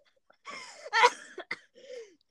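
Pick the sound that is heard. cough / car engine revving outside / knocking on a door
cough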